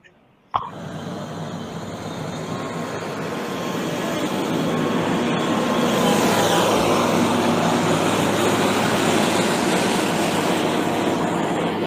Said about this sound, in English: Ain't no driving through that shit. Not till that damn tractor like that came through there.